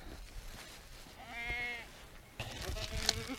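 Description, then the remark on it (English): Two wavering sheep bleats at feeding time, a clear one and then a rougher one soon after, rising over steady outdoor farmyard noise. “You're a good looking sheep, mate.”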